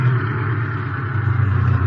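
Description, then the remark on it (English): A car engine hums steadily at low speed, with a deep rumble and a faint rise in revs toward the end as the car turns into a warehouse. No one speaks. “Look, look, that must be the warehouse. McCann has already driven his truck in. Yeah, turn in”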